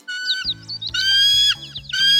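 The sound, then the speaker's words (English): Chipmunk chirping in the woods comes in three high-pitched squeaky bursts with trilling, sliding notes, fairly loud, over a low steady hum underneath. No one speaks. “Look! It's a chipmunk!”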